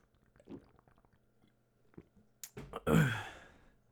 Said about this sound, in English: let me get a drink of this water.